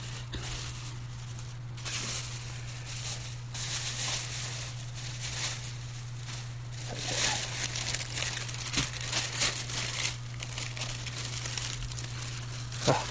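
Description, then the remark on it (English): Paper crinkling and rattling, with bursts of crisp rustling and crumpling coming in irregular waves over a steady low hum, and no one speaking. “Sure, you really like listening to all these paper rattles.”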